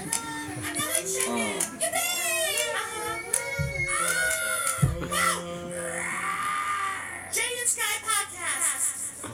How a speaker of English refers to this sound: Hey, a chicken. Oh my god, a horse.